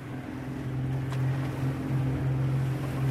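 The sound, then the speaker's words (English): A small boat's engine drones steadily on the open sea, a low throbbing hum running the whole time over a wash of wind and water noise, with no voices; the boat's team is out catching and tagging turtles. “After 5 long hours at sea, Nichols and his team have caught and tagged only one turtle.”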